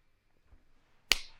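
A single quick slap lands with a crisp, sharp crack and a brief fading tail, following a second of near silence with only faint low rustling.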